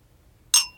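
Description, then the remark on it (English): A single bright clink of wine glasses touching in a birthday toast, followed by a short ringing tone that fades within a fraction of a second, with no voices. “Cheers. Happy birthday, Heidi. Cheers. Cheers.”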